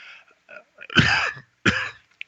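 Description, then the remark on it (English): Someone sneezes: a few quick breathy intakes, then two sharp, explosive bursts in close succession, loud, with no speech around them. “Excuse me. Bless you.”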